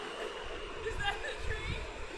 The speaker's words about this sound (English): This is us. This is our train.